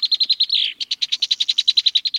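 A red-winged blackbird calls in a rapid, steady series of sharp, high chipping notes, broken early on by one brief buzzy slurred note, loud and alone with no talking.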